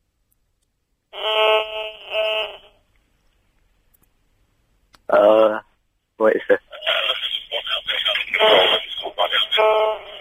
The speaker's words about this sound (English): Well, that's interference from your mobile phone.